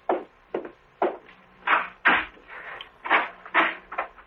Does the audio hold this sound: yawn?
no